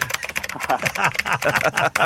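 Rapid, continuous typing on a computer keyboard, a dense stream of crisp key clicks in an uneven rhythm, with faint voices murmuring underneath.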